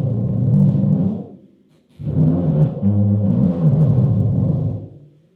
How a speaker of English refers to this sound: Really sounds like a lion roar. So, cool. Yeah. You just, be honest, you just put in an actual lion. No, that was the artificial lion's roar. That was the string and the drum, I promise.